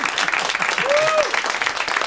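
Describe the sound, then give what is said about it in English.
A live show audience claps late, after the announcement of Ron Bennington's Adjusted for Inflation Bureau Game, in a steady, dense patter for about two seconds, with a brief whistle-like tone that rises and falls in the middle of the applause. “Some of them tell their hands to clap when it's way too late.”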